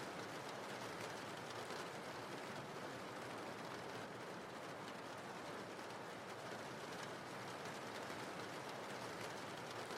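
Steady, dense rain pours down in a continuous hiss with fine crackling patter, holding an even loudness throughout with no voices or breaks.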